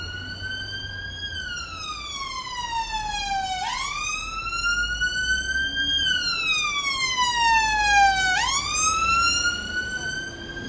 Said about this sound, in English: I don't know about you, but when I'm outside of London, I miss the sound of sirens going to some catastrophe that isn't mine.